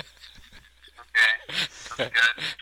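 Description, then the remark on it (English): A person imitates a dog barking with four or five short, loud yaps in quick succession, preceded by a moment of quiet background. “what sound does a doggy make? Does a doggy make? Yeah. Let's see. It goes bark.”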